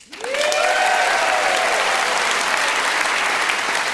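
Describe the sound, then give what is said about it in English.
A live audience bursts into sustained applause, dense steady clapping with a few rising whoops and cheers, loud and continuous throughout. “By a quick round of applause, how many have heard debaters on the radio?”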